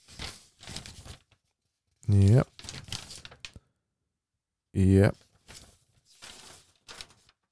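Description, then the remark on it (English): Papery rustling and flapping as a sheet of paper is flicked through and handled in several short bursts, interrupted twice by a loud, brief voiced sound. “Now all that's left is for me to flick through this piece of paper and pretend that I'm reading the notes that I have not planned for this podcast.”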